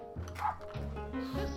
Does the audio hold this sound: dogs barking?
yes